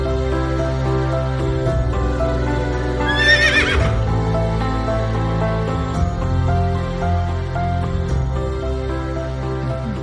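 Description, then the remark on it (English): A single loud horse whinny rises and falls about midway through, set against a steady, sustained musical backing that plays throughout without any talking, introducing the title of a romance novel being written, Love in the Time of Horses. “Love in the Time of Horses.”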